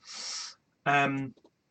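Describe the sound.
A breathy whoosh, then a single harsh, drawn-out caw voiced by a person imitating a raven, fairly loud, trailing off into a couple of short clicks.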